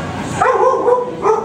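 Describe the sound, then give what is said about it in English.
A dog barks twice in close succession, each bark a drawn-out, tonal yelp with a whiny edge, moderately loud, with no talking. “Very dog friendly. I love that they're dog friendly.”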